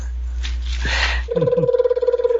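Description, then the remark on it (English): After a second of muffled rustling and background noise, a telephone starts ringing with a rapid, warbling electronic trill that is steady and fairly loud. “Can we have the person who was calling, who was actually calling the phone?”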